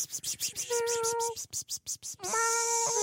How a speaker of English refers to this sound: Meow. Oh, my God. Oh, dude, it's definitely a cat.